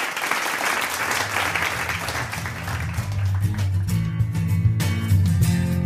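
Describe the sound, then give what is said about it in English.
A crowd applauds with dense, steady clapping, then a low, droning music bed comes in under the clapping for the second half. “Yeah, in true 80s fashion, turn the boo into a slow clap.”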